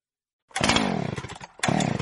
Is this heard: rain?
no